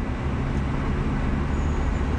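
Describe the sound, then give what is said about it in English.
Steady, loud rush of road noise from a car driving with its windows down, with a deep low rumble, continuous throughout with no voices. “Sorry about that. Had to put the windows down in the car.”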